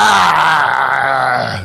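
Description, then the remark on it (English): A voice lets out a loud, strained guttural growl that rises into a harsh scream, one continuous imitation lasting under two seconds and fading slightly at the end. “After 15 minutes, the closing hymn was interrupted by a horrific gutter growl and scream.”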